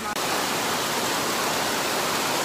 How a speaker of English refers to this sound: In the rain in an open air terminal, nowhere to go.